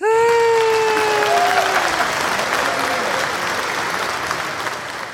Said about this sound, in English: A second round of applause. That was awesome.